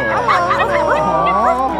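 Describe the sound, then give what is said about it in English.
A team of puppies pulling a red wagon full of kittens in West Duluth yip and bark over one another in a busy, overlapping chorus, high-pitched, excited and loud for the whole moment. “It's a red wagon full of kittens being pulled by a team of puppies.”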